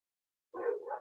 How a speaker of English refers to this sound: And I'm listening to my dogs bark outside, and I've lost train of thought of what the second one was, but you already heard it.